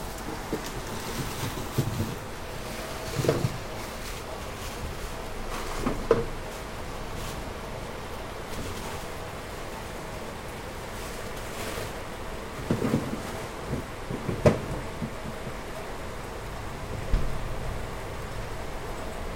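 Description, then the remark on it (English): Heavy rain pours down in a dense, steady hiss, broken by occasional louder bursts of splashing, with no voices over it. “It's raining really hard right now in my place.”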